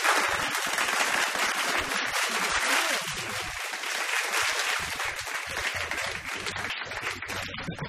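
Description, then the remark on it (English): A burst of canned applause played on the Triple M radio show Get This for comedian guest Ardal O'Hanlon, dense steady clapping at a constant loud level for about eight seconds with no voices over it. “Please, some more fake applause for Ardal O'Hanlon.”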